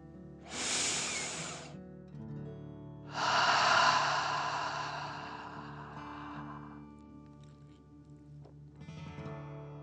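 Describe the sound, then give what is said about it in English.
An audible breath drawn in sharply through the nose, then a longer, forceful airy exhale through the mouth as if breathing fire, in a deep-breathing exercise, with a faint start of another breath at the end over soft sustained background tones. “Again, breathe in through your nose and out through your mouth, pretending you are breathing fire.”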